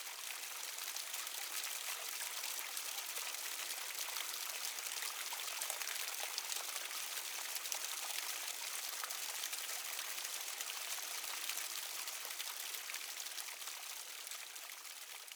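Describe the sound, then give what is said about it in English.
Steady flowing stream water, a continuous bright rushing and trickling with no breaks, fairly loud, with no voices. “I feel I'm just walking with just my thoughts and enjoying, you know, the river, the glint of light off the stream.”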